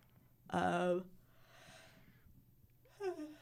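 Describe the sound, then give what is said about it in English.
A loud yawn: a strained, voiced opening that trails into a long airy exhale, followed moments later by a brief falling vocal sigh. “excuse me. Big yawn.”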